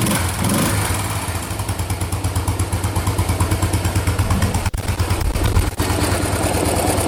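A single-cylinder Yamaha SR motorcycle engine idles steadily, its loud, low, uneven thumping pulses repeating rapidly with a rough mechanical rattle, and no voices present.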